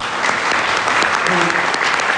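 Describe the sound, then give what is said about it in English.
Steady audience applause fills the whole stretch, a dense, sustained patter of many hands clapping at an even loudness, with a faint voice briefly murmuring underneath; the audience is applauding in thanks to a rabbi. “applause and thanks for God”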